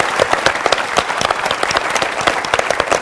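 An audience claps steadily, a dense, fairly loud wash of many hands that stays at an even intensity from start to finish with no voices standing out.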